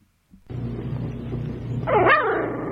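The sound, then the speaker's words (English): A Chihuahua yaps and whines over a steady low hum, ending in a louder, high-pitched burst of yelping barks that rise and fall in pitch. “What animal you want to listen to now? Chihuahua.”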